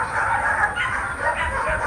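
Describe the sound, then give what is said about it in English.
Many dogs in crates fill the hallways of the overcrowded Austin Animal Center, an animal shelter in Austin. They bark and yelp at once in a loud, unbroken chorus, their overlapping high-pitched cries blending into a steady din with no pauses. “Walking into the Austin Animal Center, visitors are met with crates of loud dogs filling its hallways.”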